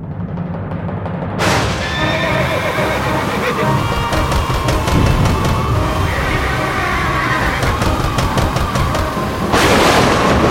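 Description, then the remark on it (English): A loud thunderclap breaks in on a dark and stormy night at an estate, followed by a steady wash of rain and rumbling, with rapid crackling in the middle and another sharp thunder burst near the end. “Let us begin on the estate of Mr. and Mrs. Thomas Easton on a dark and stormy night.”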